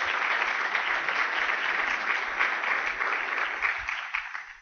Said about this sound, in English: And so thank you very much to all of you for sponsoring. Can we have a hand, a round of applause for these folks?